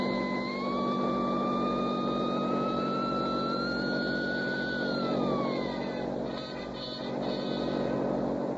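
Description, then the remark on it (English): A Studebaker sedan's engine roars as escaping convicts drive off toward the west gate, its whine climbing steadily as it accelerates, then dropping in pitch as the vehicle pulls away, leaving a low rumble. “Okay, boys, let's go. Pick that sign open and drive straight to the west gate.”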